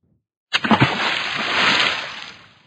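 A retro video game water splash effect, the one used in id video games such as Doom and Rage: a sudden plunge with a few quick sloshing bursts, then a hissing spray of water that swells briefly and fades out over about two seconds.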